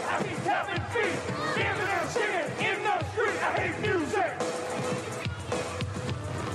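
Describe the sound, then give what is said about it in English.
A large crowd heard in a recorded song jeers and boos, a dense, continuous roar of many overlapping voices with rising and falling shouts that stays loud for the whole stretch. “You can definitely hear the crowd booing or whatever they're doing.”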